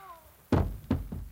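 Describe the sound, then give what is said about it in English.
Three heavy thuds of punches landing in quick succession as a man is knocked out in a fight, the first two loud and dull, the third softer, preceded by a faint voice. “you have knocked him out.”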